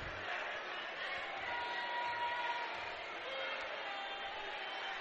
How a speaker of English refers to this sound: Crowd's kind of filing out.